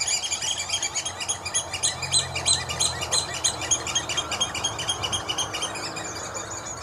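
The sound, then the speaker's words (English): Oystercatchers call incessantly, a dense chorus of shrill, piercing piping notes overlapping in rapid bursts, loud and continuous throughout with no voices. “They scream and call almost incessantly.”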